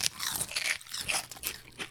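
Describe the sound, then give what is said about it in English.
Loud crunching and chomping of a crisp barbecue-and-bacon flavoured snack with a barbecue coating, like barbecue potato chips, with repeated bites breaking into a steady, uneven rhythm of crackly chews and no talking. “Crunch and chomp loudly. So people know what we're doing.”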